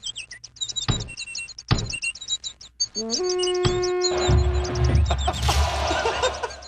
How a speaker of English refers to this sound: Another bird died.